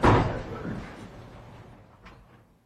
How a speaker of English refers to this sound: Exchanges a brief word with his lawyer, and then he's taken away to the back, and the door is closed.